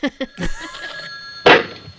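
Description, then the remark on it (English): A phone rings with a bright, sustained electronic tone after a couple of sharp knocks, then a loud burst of rustling noise cuts in near the end; a film scene set in a mother's bedroom at night. “The phone rings, and suddenly Katie lunges over her mother with the phone, scaring the shit out of her and me.”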